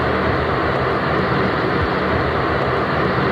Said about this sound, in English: residents have complained about the noise from the giant fans that are used to cool the computers. I'm going to play you the sound from a news report from the TV station WATE so you can hear what it sounds like.